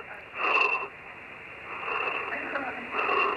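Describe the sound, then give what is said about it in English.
Heavy, labored breathing over a muffled phone line, three drawn-out raspy breaths in an uneven rhythm, fairly loud, with no talking. “it's breathing heavy.”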